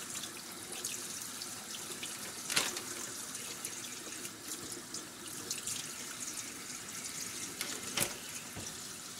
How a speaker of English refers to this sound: Rinsing off our chicken, moving it to a new bag.